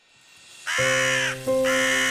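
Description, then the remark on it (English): Two loud, harsh bird calls, strong, the second following a brief dip after the first, with no talking over them, added by a tablet as a sound effect to a lullaby. “Add birds chirping.”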